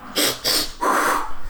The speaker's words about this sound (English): Okay, just breathe. Ready? Let's do some breathing exercises.